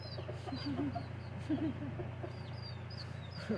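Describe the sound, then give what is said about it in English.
Several purple nano chickens cluck in short, bubbly bursts over a steady low hum, with faint bird chirps higher up in the background. “I raised purple nano chickens.”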